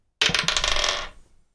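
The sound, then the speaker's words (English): Dice rolled for damage in a tabletop role-playing game clatter and tumble across a hard tabletop, a quick burst of rattling clicks that slows and settles within about a second, fairly loud with no talking. “That was the wrong dice.”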